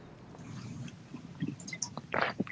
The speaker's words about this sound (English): I got my water bottle. You got your Topo Chico. We're going, baby. We sipped at the same time.